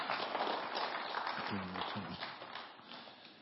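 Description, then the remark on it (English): Audience applause for guests as they return to the set: a dense, steady wash of many hands clapping for a few seconds, with a brief voice rising partway through, then easing slightly toward the end. “Give them a round of applause as they get back to the set.”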